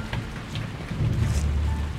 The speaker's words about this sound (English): He'd walked for hours and the rain had not let up once. It was foolish of him to think that the rainy season would clear its skies for his walk, but he'd been hopeful nonetheless.